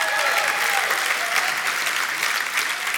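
A church audience claps and cheers together during a sermon, a dense, steady wash of applause that stays loud throughout without any speech over it.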